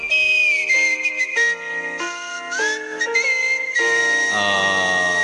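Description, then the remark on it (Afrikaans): A woman whistles a melody of sustained, sliding notes that shift in pitch. The tune is clear and fairly loud and carries on steadily for several seconds with no talking. “Yes, yes, maar sy fluit het ding vak daar.”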